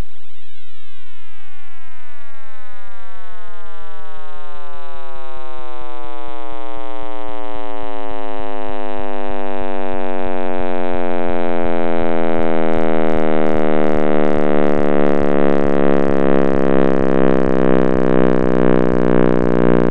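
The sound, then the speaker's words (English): A synthesized sonification of the cosmic microwave background, the light of the baby universe after the Big Bang, its wavelength stretched by expansion and translated into sound: a dense, steady chord of electronic tones slowly sliding downward into a deep, loud rumbling drone, with faint rhythmic pulsing near the end. “We're now going to listen in to the cosmic sound of the baby universe, what we could call the Big Bang Rumble.”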